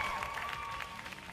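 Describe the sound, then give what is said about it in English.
A brief crowd applause sound effect, dense and steady clapping from many hands at an even loudness throughout, with a faint sustained tone running underneath. “Let's see how the crowd is tonight.”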